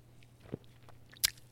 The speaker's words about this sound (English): Had to wet the whistle.